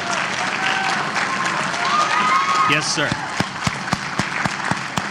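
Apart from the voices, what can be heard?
audience applause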